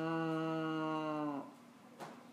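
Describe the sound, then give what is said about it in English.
During a game of Go Fish, a person imitates a cow with one long, droning moo that dips in pitch as it ends, followed by quiet and a brief soft rustle. “you have a cow? How'd you know? Because you made the sound.”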